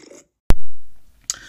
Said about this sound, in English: Okay, you hear the sips.